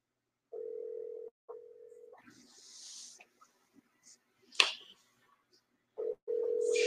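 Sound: phone call dialing tone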